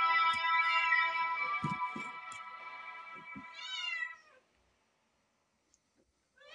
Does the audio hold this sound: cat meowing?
yes